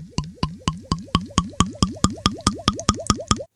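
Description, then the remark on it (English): Someone sipping a drink, heard as a steady run of about fifteen quick, fairly loud gulping plops, evenly spaced with a slight rising tone, and no talking. “Wait, let me take one more sip on that note.”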